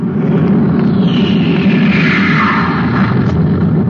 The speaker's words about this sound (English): Hey, listen, a spaceship.